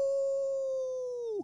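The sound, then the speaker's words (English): A person imitates a wolf howl as a homemade sound effect for the Hockey Wolf name: one long, sustained vocal tone held steady for over a second, then dropping sharply in pitch as it cuts off. Fairly loud. “I can't afford a sound effect, so I have to make them myself.”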